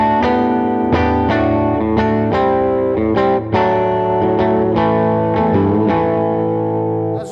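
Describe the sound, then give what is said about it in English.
An electric guitar played through a distortion crunch pedal with a blend control plays a crunchy, chord-heavy riff with rhythmic strums and sustained, harmonically rich tones, loud and steady throughout with no talking. “It also has a blend on it as well, so you know, that's a cool thing.”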